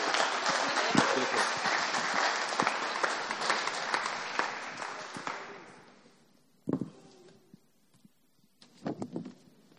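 A crowd claps in dense, sustained applause for about five seconds, showing appreciation for two visiting guests, then it fades out, leaving a few scattered claps and faint shuffling noises afterward.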